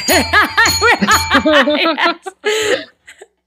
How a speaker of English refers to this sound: I've already got like, if I had a little bell, I might have a bell. I think I could.